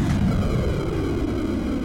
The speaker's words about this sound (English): So now the time has come for the ship to leave. Its enormous engines burst into life for the first time, frying several rare species of newt.